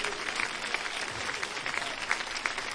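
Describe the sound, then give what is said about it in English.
An audience at a church service claps their hands to the Lord in sustained, dense applause, a steady wash of many overlapping claps with no voices standing out. “Would you clap your hands to the Lord one more time?”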